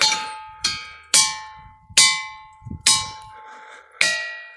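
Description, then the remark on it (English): A large ringing rock, about 4 feet in circumference, is struck six times at an uneven pace, each blow giving a sharp, bright metallic clang that hums and slowly fades, with the pitch shifting slightly between strikes depending on where it is hit. “All kinds of different shapes, and depending on where you hit on the rock, you will get different tones.”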